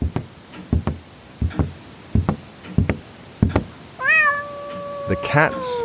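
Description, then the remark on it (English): A string of sharp, evenly spaced knocks gives way to cats named White and Dunn meowing in a kitchen, a long rising-and-falling meow followed by a shorter overlapping cry near the end. “The cats are your partners?”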